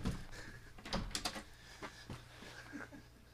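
A locked door being worked open: a cluster of sharp metallic clicks and rattles from the latch, followed by scattered softer knocks and shuffling as it opens, with no one speaking.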